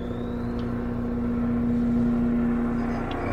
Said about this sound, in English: A helicopter, what the fuck?